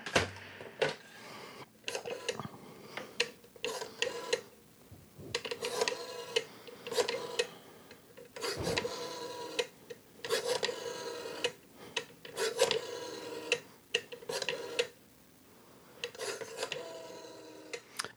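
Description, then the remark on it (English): A rotary phone dial is turned again and again on the Born Rotary green line to call a show guest, each spin followed by a rasping, ticking whir as it returns. The bursts come in quick, uneven sequences with brief pauses and no voices. “I'm going to dial him up on the Born Rotary green line here.”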